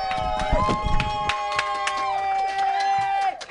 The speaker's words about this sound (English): Clap it up for me. Thank you so much.